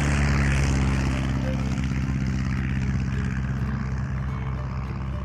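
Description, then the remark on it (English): An open-cockpit Moth propeller airplane rattles down a runway and takes off, roaring steadily at full power, its deep engine drone layered with buzzing harmonics, loud and continuous, slowly easing slightly in volume toward the end. “She rattled down the runway and soared seamlessly into the air.”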